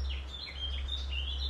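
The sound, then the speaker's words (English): Bird song runs throughout: a string of high, sweet chirps and short warbling phrases over a steady low rumble in the background. “It's a nice song.”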